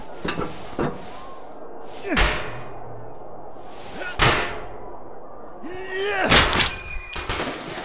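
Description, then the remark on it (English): A metal vent cover is banged loose with about four heavy, ringing thumps spaced a couple of seconds apart, the last one louder and followed by a brief metallic clatter. “Yes, help me pop out the vent.”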